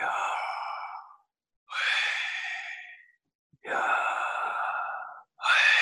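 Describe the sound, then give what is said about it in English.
Four slow, airy breaths, alternating in and out in a steady rhythm with short pauses between, breathing out the syllables of the name Yahweh without using teeth, tongue or lips. “And I don't know if you'll be able to hear this, but I'm going to breathe, literally breathe, the name of Yahweh.”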